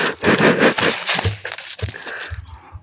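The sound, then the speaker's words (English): Paper wrapping crinkles and rustles as it's pulled away from massage bars, a dense run of crackly, crunching sounds that loosens into scattered softer crinkles toward the end. “A paper that's covering all of the massage bars.”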